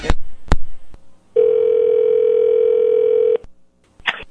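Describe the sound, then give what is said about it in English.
Two sharp plastic clatters of a phone handset being hung up on an unwanted caller, a brief pause, then a loud, steady dial tone hums for about two seconds before cutting off, followed by another click. “Stop calling my fucking house.”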